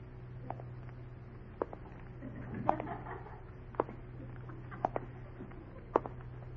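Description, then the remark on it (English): Approaching footsteps: about six soft thuds at a steady, unhurried pace, roughly one per second, over a constant low hum with faint scuffling between steps. No one speaks. A figure walking toward listeners through dark shadows at night. “Oh, I can hear his footsteps.”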